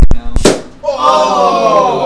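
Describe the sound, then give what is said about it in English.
A balloon pops with a sharp, loud bang, preceded by a smaller snap, and a voice immediately cries out in surprise afterward. “They're quieter balloons.”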